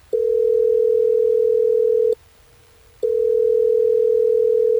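A telephone ringback tone, loud and steady, holds for about two seconds, pauses briefly, then sounds again, as a Hot 101.5 radio show places a call to a listener on the air. Nobody speaks.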